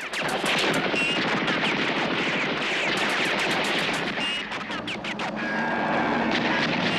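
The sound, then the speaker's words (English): A truck-mounted gun in a film fires rapid, continuous bursts of sharp shots, loud and dense, with a roaring engine-like drone underneath and no voices. “Commence firing is never something you want to hear unless you're on the other side of the weapon, especially one that's mounted to a truck.”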